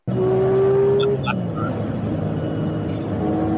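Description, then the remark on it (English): A Porsche 911 sports car engine rumbles loudly and steadily, with a brief rising whine early on as it revs, then settles into a throaty idle for the remaining few seconds. “All right, yeah, but I got a Porsche 911.”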